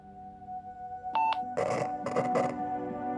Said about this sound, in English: Hear that? Nothing but static.